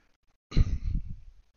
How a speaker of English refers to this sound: Sorry, excuse me. I didn't mean to do that in the mic, clear my throat.